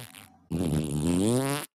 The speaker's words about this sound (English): I did hear your fart.